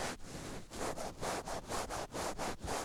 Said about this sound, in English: Like a weird scratch and sniff of the microphone. Yeah, I'm actually gonna do the back of it where the horse is.